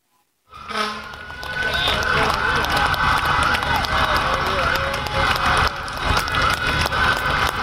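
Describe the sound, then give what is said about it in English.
After a brief silence, a crowd at a hospital in New York City bursts into loud, sustained cheering for healthcare workers and first responders, a dense, steady roar of shouts and whoops with scattered clapping that keeps going without a break. “People showing their thank yous to healthcare pros and first responders in New York City, of course, the virus epicenter.”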